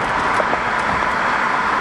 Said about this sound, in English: Oh no, it's raining.